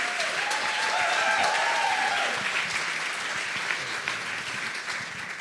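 An audience applauds steadily and continuously, a dense wash of many hands clapping at an even volume, with a brief high cheer or whoop near the start.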